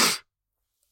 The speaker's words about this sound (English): Bless you.